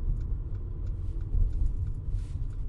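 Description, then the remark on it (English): A Mercedes A-Class drives steadily in heavy traffic along a German city road. Its low engine and tire rumble fill the sound with a constant, even drone, with no talking. “Man, this is a really comfortable car. I wish I had one of these.”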